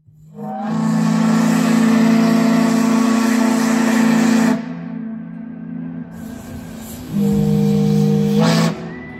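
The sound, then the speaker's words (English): A river-going steamboat's whistle, used to signal its intentions, sounds two long, loud, breathy blasts with a strong low tone and hissing steam on top, separated by a short quieter pause, with no voices. “So that black whistling bronc who was a fan of band music was named for a river-going vessel that signals its intentions with a whistle.”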